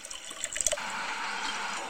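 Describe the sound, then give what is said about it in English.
Bourbon splashes and then pours steadily into a glass, a continuous trickling fill that runs for a couple of seconds with no voices. “I like the sound of a bourbon being poured.”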